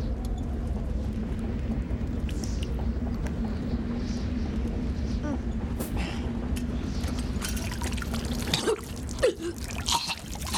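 Hot coffee pours steadily into a cup, a continuous liquid rush over a low hum for several seconds, then stops and a sudden sneeze breaks in near the end.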